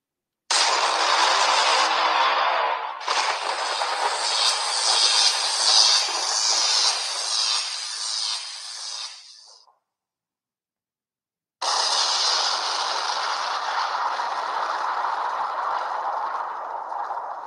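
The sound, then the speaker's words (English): Loud, steady roar and rattle of a New York subway train, shifting in tone partway through, fading and cutting to silence, then resuming at full volume. No one speaks. “Now I can go on to my primary sound effect for this segment right here, the New York Mass Transit Files.”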